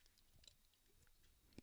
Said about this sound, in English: and I'm going to take a sip of my drink real quick.